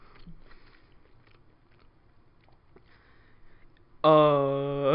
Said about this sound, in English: … gonna take the first bite of the hottest wing that we have